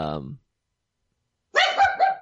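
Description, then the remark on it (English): A dog gives a short burst of two or three yappy barks after a brief snatch of a voice and a moment of silence. “And your dog is also not happy.”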